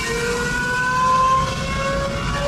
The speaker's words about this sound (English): Okay, this is it's a Ferrari, yeah. It's a, if I had to guess, this is maybe a 2003, 2004 Ferrari car